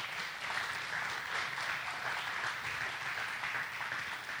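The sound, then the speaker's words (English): Sustained applause from a large crowd at a morning gathering, a dense steady wash of many hands clapping at once to recognize the people who serve in the children's nursery ministry, fairly loud and even throughout with no talking over it. “And would you give them a big hand clap this morning?”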